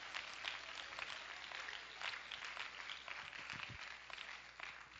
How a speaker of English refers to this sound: Yeah. Come on, let's clap our hands and give praise to Him right now.